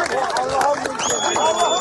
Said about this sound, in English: She's carried to a waiting ambulance. The crowd celebrates with applause.